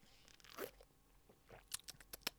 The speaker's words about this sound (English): Let me take a sip of coffee here.